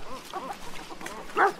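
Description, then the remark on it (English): Dogs play together outdoors in a game of leap and chase: a few faint yips and whines early on, then one louder bark near the end, with no talking. “They take to the sky when the dogs play together in a game of leap and chase.”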